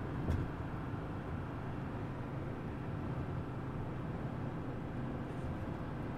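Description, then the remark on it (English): A steady, low rumbling drone fills the cabin of a moving car that is falling apart, with extensive rust beneath it. Constant road and engine noise with no voices holds at an even level throughout. “This car is falling apart, by the way. I wouldn't be surprised if it falls apart on me while I'm driving.”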